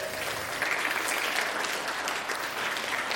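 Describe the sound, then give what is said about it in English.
A church audience breaks into steady applause for a newly installed elder, a dense wash of many hands clapping at an even, fairly loud level throughout, with no voices standing out. “Round of applause,”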